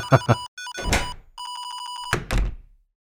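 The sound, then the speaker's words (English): A telephone bell rings in two rapid, trilling bursts, bright and metallic, broken up by heavy thuds and clunks before and after, with no voices. “Sorry, I do need to take this.”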